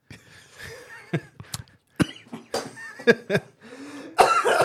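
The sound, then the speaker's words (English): A man's fit of laughing coughs after inhaling wrong in a dusty room: several sharp, irregular bursts of coughing and sputtering, ending in a louder, rougher hack, with no talking. “It's a laughing cough. Yeah, he inhaled wrong.”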